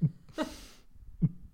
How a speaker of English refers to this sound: It's a heartbeat.